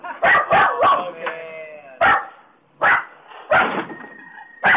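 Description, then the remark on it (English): A dog barks repeatedly in the background, a quick run of three or four sharp barks followed by several more spaced out, loud, with a whiny, yelping edge to some of them. “So the dog's barking in the background, which is not the parrot, by the way.”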